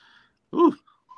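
A single sharp sneeze, a short loud burst that cuts off quickly, with only faint quiet sounds before and after it.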